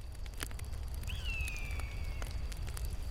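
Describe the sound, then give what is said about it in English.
A campfire crackles, with scattered sharp pops over a steady low roar of flames; a thin, high whistling hiss rises briefly in the middle. No one speaks. “would mighty appreciate if I could join your campfire.”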